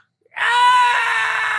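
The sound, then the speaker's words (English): After a moment of silence, a voice lets out a single loud, sustained scream, holding a steady, piercing pitch to mimic a sonic weapon, an infernal screamer, pulsing out sound waves that bend the metal of a tower. “You don't have to scream when you use it.”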